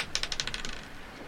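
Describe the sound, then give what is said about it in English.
A quick rattle of dice tumbling across a hard tabletop, seven or eight rapid clicks bunched in the first half-second before settling into quiet, rolled for a perception check to search for traps. “Go ahead and roll a perception check.”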